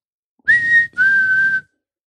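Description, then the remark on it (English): A person whistles two clear, steady notes: a short one followed after a brief pause by a longer, slightly lower one. The whistle is fairly loud and heard alone, with no talking. “So he whistles and the dog looks back at him.”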